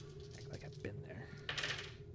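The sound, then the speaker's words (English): A quick clatter of eight dice tumbling across a tabletop as a player rolls a wits check plus comm tech, with sharp bright clicks clustering near the end, over a low steady hum and faint background voices. “So I roll my wits check plus my comm tech.”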